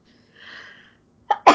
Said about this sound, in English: I gotta sneeze.